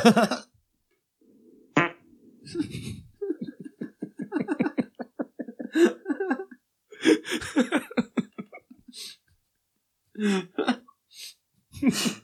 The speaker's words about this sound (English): Here's sound effects. Sound effects can play the following sounds. Rimshot, quack, bark, honk, laser, gunshot, explosion, another explosion, burp, fart, another fart, and game over. Which would you like to hear? Another fart.